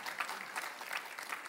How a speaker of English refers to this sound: Can I get a, we don't really amen here. I don't know what you do. You golf clap me. You can, that's fine.